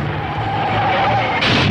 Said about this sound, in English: This film is called Tin Men. A guy bangs into my car, thinks I did him in, tries to get even with me by stealing my wife.